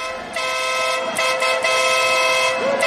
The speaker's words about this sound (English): So someone's honking a horn.